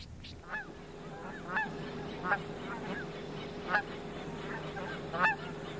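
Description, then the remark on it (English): Geese honk repeatedly as they fly in from all over, about an hour before sunset, a chorus of sharp, nasal calls rising and falling irregularly over a steady low hum, with several louder honks standing out. “Traffic is just stop watching the geese come in.”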